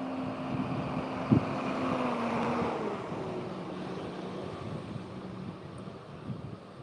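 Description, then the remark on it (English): A truck rumbles past outdoors, its broad engine and road noise swelling over a few seconds and then easing off, with a steady low hum and some wind underneath. No one speaks. “Let me let this truck pass.”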